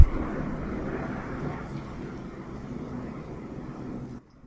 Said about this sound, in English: Oh, there's a plane.